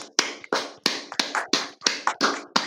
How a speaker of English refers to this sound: Let's give Janet a round of applause here.